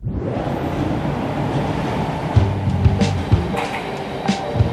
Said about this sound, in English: The rush of the subway fills the station, silencing the morning commuters.